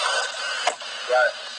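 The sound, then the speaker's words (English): A vacuum cleaner drones steadily throughout, a loud continuous whooshing roar with a slight flutter, and a brief muffled voice-like murmur rising over it near the end. “This nigga vacuum.”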